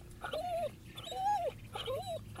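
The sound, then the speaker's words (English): A dog whimpers at another dog in three drawn-out, high-pitched whines, each rising and falling, spaced evenly at moderate volume with no one talking. “See, you wanted to eat the other one, but that one you want to be your friend?”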